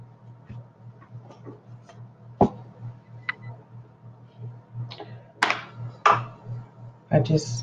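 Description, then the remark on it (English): A deck of tarot cards being shuffled, with soft papery ticks and a few sharper, louder snaps and riffles toward the end, over a low steady background hum. “Shuffle this deck up real good.”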